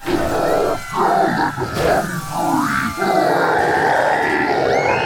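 A large, energized crowd in Iowa cheers and bellows continuously for a political candidate, loud, with deep grunting roars and shouts rising and falling over a dense wall of voices.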